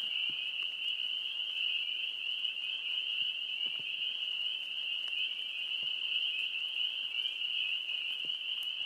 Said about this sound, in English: Listen to the loud night symphony of tweeting birds and chirping crickets.